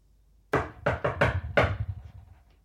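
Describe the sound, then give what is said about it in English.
Five sharp knocks rap on a wooden door as a secret knock to have it opened, in a quick, uneven rhythmic pattern, fairly loud, each hit ringing briefly before fading, with no voices. “I have to do the secret knock to open the...”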